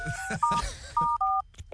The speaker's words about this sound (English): Oh, his phone ring even sounds rich, doesn't it?